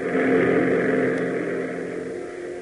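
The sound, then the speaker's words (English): A P-38 fighter plane's engine roars in a steady, loud, droning rumble with a buzzing hum, easing off slightly toward the end. No voices are heard. “seeing the P-38 roar in, its nose guns black and threatening, and the Stinson following,”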